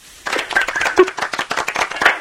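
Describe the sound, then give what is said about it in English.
A brief round of applause from a small audience, given in response to a caller's answer: dense, overlapping claps that start abruptly, hold steady at moderate loudness for about two seconds, then stop. “Is that the first time since you contracted salmonella that you've received a round of applause in response to the news?”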